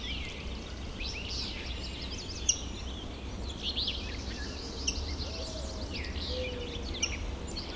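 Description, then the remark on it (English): Faint mourning doves, at least two of them, coo softly in low, drawn-out notes beneath a busy chorus of higher chirping and whistling songbirds, with a steady outdoor background hum throughout. “A couple different mourning doves here.”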